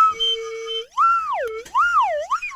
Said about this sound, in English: Yeah. That was a tangent. Where's the tangent whistle?